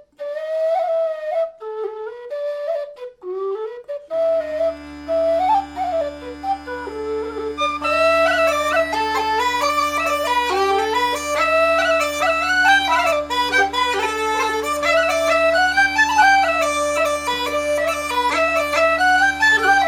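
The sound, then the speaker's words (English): A lively traditional tune on pipes: a bright ornamented melody opens alone, then steady droning tones join after a few seconds and sustain beneath it, loud, with no voices. “the weekly show where I explore the likely repertoire of 18th and early 19th century bagpipers using historic music collections, written for bagpipes or not, and played on Illan pipes, Highland pipes, and whistles. Let's hear some tunes.”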